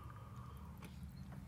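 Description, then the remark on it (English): A single quiet sip of Death Wish coffee, a short wet slurp over a low, steady hum, with no one talking. “Sip of death wish.”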